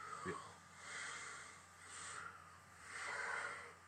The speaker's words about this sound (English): Is this you snoring?